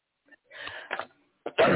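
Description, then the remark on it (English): A person sneezes at a laptop, with a breathy intake and a couple of short bursts building up, then a loud, sharp, noisy sneeze at the end. No speech. “I couldn't run away from the laptop in time to sneeze in the other room.”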